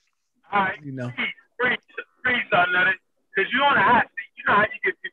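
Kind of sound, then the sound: fault, quiet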